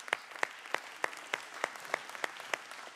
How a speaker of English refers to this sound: Why don't you give yourself a round of applause this morning, amen?